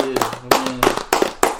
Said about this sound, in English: Round of applause to him.